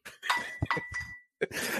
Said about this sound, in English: That one didn't break, by the way. That glass didn't break. No, definitely did not.